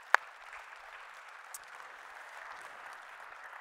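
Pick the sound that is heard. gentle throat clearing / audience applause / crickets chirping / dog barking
audience applause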